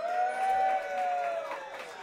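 An audience at a show claps and cheers in a steady, dense wash of noise for about two seconds, with a few sustained whoops and shouting voices riding on top, voting for a joke-teller to go on to the next round.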